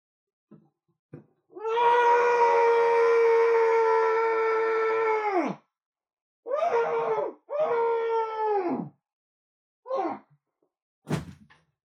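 A long, sustained, muffled scream into a stress pillow with a steady pitch, followed by two shorter strained screams and a couple of brief vocal bursts, with silence in between and no talking.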